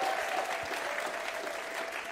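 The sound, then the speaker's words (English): An audience claps steadily as a group takes their seats, a dense, sustained wash of applause with no pauses, holding an even loudness from start to finish. “Give them all a hand as they take their seats.”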